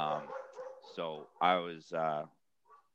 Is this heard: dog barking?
yes